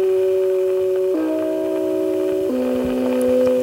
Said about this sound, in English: Everybody knew that sound, and it became pervasive, even in people's homes, that the doorbell sounds just like that. What was the real purpose of that chime? The real purpose of that chime, the chime was created by the Deegan Company, by the way.